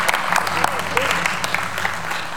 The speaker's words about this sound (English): And everybody say amen. Amen. Come on, let's give a good hand clap. Amen.